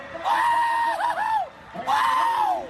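A high-pitched celebratory yell in two long, loud bursts, the voice wavering and dipping in pitch in the first before a short pause and a second sustained whoop.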